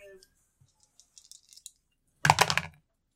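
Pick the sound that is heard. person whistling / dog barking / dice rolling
dice rolling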